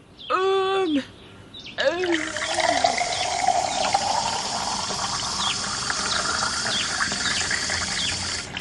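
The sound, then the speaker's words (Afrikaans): Fresh water pours steadily into a container for a pet for several seconds, a continuous splashing rush, preceded by a short high squeaky vocal sound. “So ja, heerlike vars water. Spesiaal vir jou, ou Stompie.”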